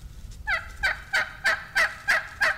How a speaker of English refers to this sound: Turkeys will also yelp. These squeaky, high-pitched yelps are the most used words in turkey language, actually. 3 to 7 yelps strung together is how females, or hens, will tell potential mates they're interested.